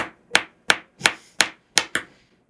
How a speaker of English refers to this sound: So, what's the alternative that you're going to drum on the surface of your desk with ballpoint pens?